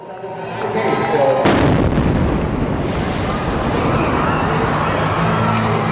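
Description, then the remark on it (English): A single loud explosion booms out after a low rumbling lead-in, followed by a sustained roar of noise and commotion that keeps going to the end: a bomb explosion at the Boston Marathon in April 2013. “Look, we're interrupting your program because there have been 2 explosions today at the Boston Marathon.”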